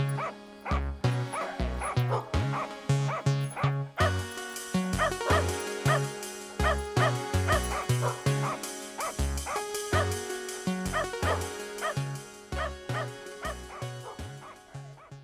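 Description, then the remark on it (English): A dog barks and yips over and over in a quick, steady rhythm, loud, with high-pitched yelps mixed between deeper woofs and something tonal running continuously underneath. “Woof woof, it's Little Barks again.”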